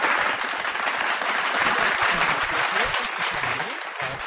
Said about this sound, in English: And some more of that phony applause for Charlie Pickering.